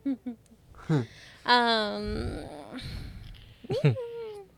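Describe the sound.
A person mimics a cat with a couple of short chirps, then a long, drawn-out vocal meow that rises and falls, followed by another brief meow-like cry, fairly loud.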